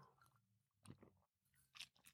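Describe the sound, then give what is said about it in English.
Quiet mouth noises: a soft slurping sip of hot tea followed by a few wet lip smacks, scattered over a couple of seconds with no talking. “Let me have a sip of this tea.”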